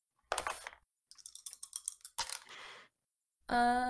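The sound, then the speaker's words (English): Dry clattering of dice being dug out and rolled to find a spell's damage, in several rattling bursts with short pauses, ending with a brief steady tonal sound. “Gotta dig out some dice.”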